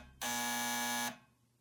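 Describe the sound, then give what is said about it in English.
A single loud, harsh door buzzer, rung at Kleinberg's door upstairs, sounds for just under a second, a steady electric drone that cuts off abruptly, with no voices around it. “I came back upstairs and rang Kleinberg's buzzer.”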